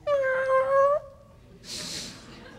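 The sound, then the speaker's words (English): A voice imitates a baby's whimper: one thin, high, wavering whine held for about a second, then a soft breathy puff of air after a short pause. “They begin just with whimpers, right? Those little...”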